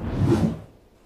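A single small wave of the Salish Sea, an inland sea, washes in at Orcas Island, Washington, with a soft, breathy swash that swells briefly and then recedes into quiet, with no voices.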